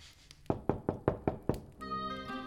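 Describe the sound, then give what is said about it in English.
Six firm, evenly spaced, loud knocks on a wooden door, followed by a sustained musical tone with steady harmonics. “The next people to knock on the door are Lorene and Jordan together.”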